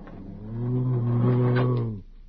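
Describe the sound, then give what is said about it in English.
A man's voice lets out a single low, sustained growl lasting about two seconds, fairly loud, imitating a bat's snarl while he scratches at a door in a costume, with no words spoken. “Bats don't growl, they squeak.”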